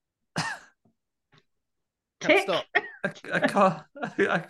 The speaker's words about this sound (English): Cough fit. Cough fit.